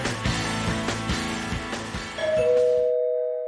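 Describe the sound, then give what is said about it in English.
A two-tone doorbell chime rings out, a higher note followed by a lower one that lingers, over a steady rhythmic beat that cuts off as the chime fades. “Someone's at the door.”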